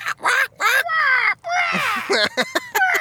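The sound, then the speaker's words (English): A person imitates a crow with a run of loud, nasal caws, a few drawn-out calls followed by quick choppy ones, with no other talk. “Crow sounds.”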